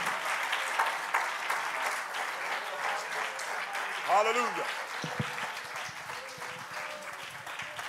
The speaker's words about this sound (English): Let's clap our hands unto the Lord. Let's just worship the Lord for a moment.